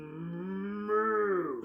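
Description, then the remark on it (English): A single long moo from a loose cow near an Olive Garden restaurant in Stillwater, deep and steady, rising slightly in pitch partway through before tapering off. It is fairly loud, with no other sounds around it. “Officers questioning the cow.”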